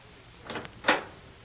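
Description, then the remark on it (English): A door is opened to see who is there for a visitor: a soft scraping rattle followed by a sharper click or clunk of the latch, moderately quiet, with no voices. “go see who is at door.”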